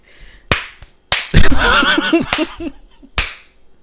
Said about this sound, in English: I'm going to slap you right there.